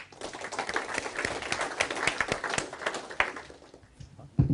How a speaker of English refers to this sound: Round of applause.